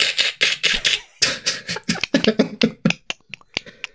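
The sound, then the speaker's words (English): Someone vocally imitates the Predator's clicking: a loud, rapid rattle of sharp mouth clicks that gradually spaces out into a dozen or so distinct, crisp clicks, with no speech. “What would it sound like if the Predator QQ'd? Click, click.”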